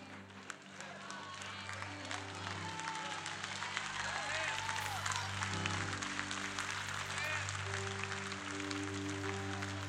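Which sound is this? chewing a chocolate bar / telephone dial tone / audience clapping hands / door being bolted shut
audience clapping hands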